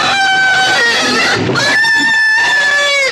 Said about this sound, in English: That's loud and really disturbing. Those pigs aren't being harmed. They're enthusiastically eating.